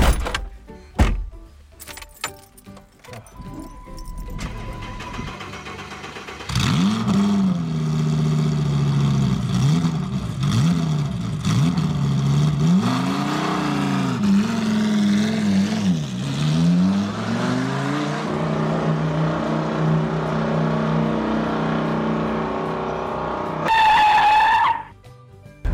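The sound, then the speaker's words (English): A car engine starts up after a few clicks and thumps, then drives steadily, its hum repeatedly rising in pitch as it accelerates and shifts gears, heard loudly from inside the car as it sets off for Warwick. “All right, we're in the car. We're going to get ready to go to Warwick now.”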